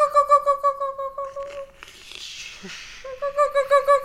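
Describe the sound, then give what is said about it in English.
A thin, high-pitched buzzing whine of a mosquito hums steadily, pulsing slightly, breaks off for a soft rushing noise in the middle, then returns for the last second. “And then a mosquito.”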